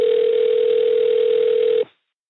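A telephone dial tone hums at one steady pitch for almost two seconds, thin and phone-line filtered, then cuts off abruptly, during a call to a professor in an economics department. Nobody speaks.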